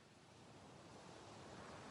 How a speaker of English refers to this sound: Breathing in, breathing out, finding your own rhythm with the waves. Just enjoy breathing in harmony with the waves.